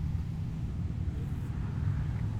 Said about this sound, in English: You're going to hear the motorcycles in going by because I just got out of the Whitman, Mass. Candlelight Vigil for the people who have passed.